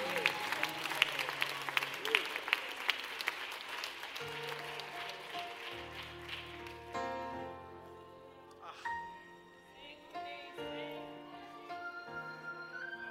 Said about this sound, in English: God's people clap their hands, for your King has come.